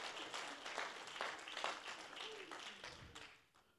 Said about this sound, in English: Why don't you give a hand clap of praise to our bold God today?